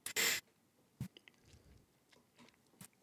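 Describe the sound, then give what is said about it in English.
A short slurping sip of the last of a Sagamore whiskey from a glass, followed by a couple of soft mouth and glass sounds in otherwise quiet surroundings. “Sorry, I was trying to finish up my last sip of the Sagamore there.”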